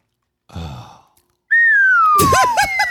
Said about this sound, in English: That was actually a live slide whistle. Was it? Oh, he's playing instruments. Well done.